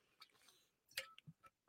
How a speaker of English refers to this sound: Well, Mo, I couldn't talk all day, but let me take a sip of coffee here real quick because my voice is starting to dry out.